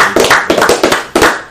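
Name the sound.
people clapping hands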